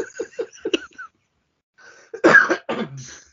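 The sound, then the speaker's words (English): A short series of quick, breathy bursts, then a pause, followed by a heavy, chesty cough with a rough, phlegmy rasp that trails off into a low grunt. “This is, oh, I've just brought up a lung.”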